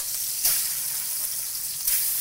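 Chicken frying in hot oil gives a steady, bright crackling sizzle, swelling twice into short louder bursts of spitting. Nobody speaks.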